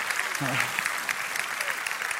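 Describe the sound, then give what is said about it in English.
A church audience claps steadily and enthusiastically in praise of God, a dense wash of many hands, with a brief voice and faint cheering rising through the applause. “Come on, give God a hand clap of praise in here.”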